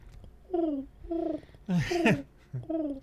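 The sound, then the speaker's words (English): A person imitates a pigeon's cooing with four throaty, warbling coos in a loose rhythm, fairly loud, the third one rougher and more forceful. “What it's is that? Pigeon.”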